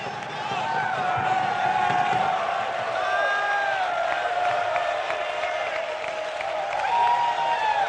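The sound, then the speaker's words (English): A large audience in an apostolic church claps and cheers continuously, loud, with excited voices shouting and whooping over a steady wash of applause throughout, as people leap for joy and dance. “And there's people clapping their hands.”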